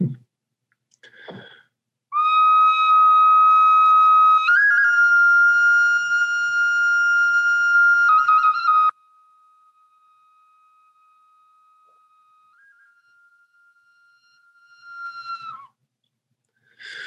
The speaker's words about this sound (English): So everyone wants to just sit up straight and feel your breath. And I'll bring in my bone whistle.